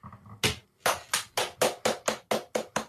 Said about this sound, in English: But I clapped.